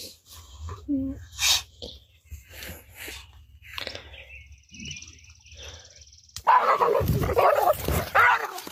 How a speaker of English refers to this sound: And the dog touched the electrical gate, got shocked and barked off, and then the donkey was laughing at it.